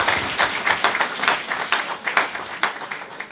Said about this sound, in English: And if you're a visitor here this morning, we love having visitors. And we want to give you this warm round of applause to make you feel welcome. Good to have you here.